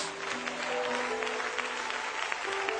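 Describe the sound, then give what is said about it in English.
An audience at a church service claps hands together in a dense, continuous patter of many overlapping claps, fairly loud and steady throughout, with faint sustained musical tones humming underneath. “One more time, clap your hands.”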